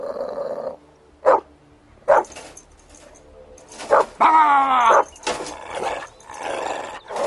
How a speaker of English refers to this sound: Now what? Shut up! Will you please stop barking?